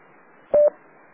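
A single short DTMF touch-tone beep dialing an autopatch phone call over radio, loud and clear for a fraction of a second, set against a steady faint hiss of band-limited radio static.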